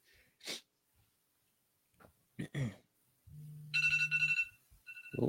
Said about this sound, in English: Turn your alarm off first, though.